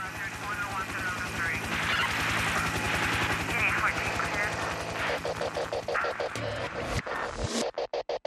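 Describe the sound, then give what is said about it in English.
A loud, steady helicopter rotor chop pulses beneath a dense wash of shouting crowd and chaotic riot noise in a song's intro, ending in a few sharp, clipped bursts as the music kicks in. “Okay, so the, you know, helicopter music, oh, God, riots, blah, blah.”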